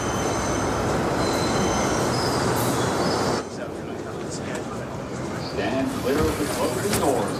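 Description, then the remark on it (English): A subway train rumbles loudly with high, sustained wheel squeals, then the roar drops to a steadier hum as a voice briefly speaks over the moving car. “the scene in which he's in a subway train.”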